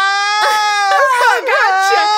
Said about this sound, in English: Are you crying? No. Sorry.